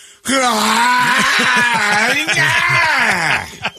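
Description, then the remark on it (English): A voice imitates an exaggerated yawn: one long, loud, breathy vocal groan lasting a few seconds, with a pitch that rises and wavers before sliding down and trailing off. “Here's you yawning.”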